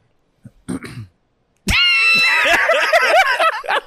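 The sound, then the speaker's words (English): A short, husky cough sputters out, then after a pause a loud, drawn-out hacking fit follows, strained and wheezing, with a high, wavering, almost squealing pitch for a couple of seconds. “That cough sound crazy.”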